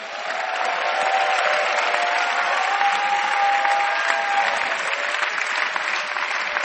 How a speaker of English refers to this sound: Clap your hands for Jesus. Somebody is coming, keep clapping.